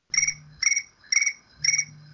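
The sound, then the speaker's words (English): A phone notification chirps four times in a steady, evenly spaced pattern, each burst a bright, trilling, cricket-like tone over a faint low hum, with no talking. “My phone doesn't seem to think so.”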